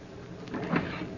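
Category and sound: household object, cabin door opening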